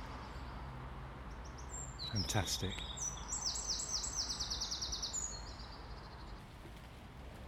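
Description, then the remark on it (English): Wrens sing a rapid, high-pitched trilling song at dawn, lasting a few seconds over a steady hiss of drizzle, with a single word spoken briefly just before the trill begins. “There we go, a conversation of wrens at last.”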